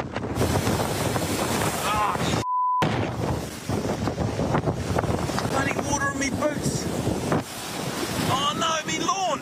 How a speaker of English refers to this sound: And then ITM fishing show host Matt Watson showed his Bay of Islands home getting hammered. Pretty windy!